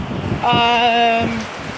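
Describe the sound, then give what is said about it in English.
Steady rain hisses outdoors in Lagos in a constant, even wash of noise, while a brief horn-like tone sounds for about a second in the middle. “Well, since it's raining, I don't think I'll be doing much but looking around and loving the weather. Just listen to the rain.”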